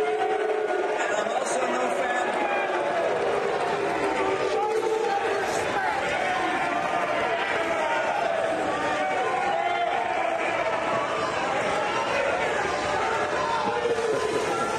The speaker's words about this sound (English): You basically was shouted down from the stage. That's the most raucous group of LDS that I've heard in quite a while. Absolutely, I have to say. that's a BYU level crowd.